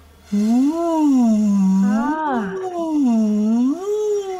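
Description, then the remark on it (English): A buzzy, kazoo-like hum made through a straw, its pitch sliding up and down in smooth wavy sirens for about four seconds, steady and fairly loud with no talking. “So I learned to use the straw like a kazoo.”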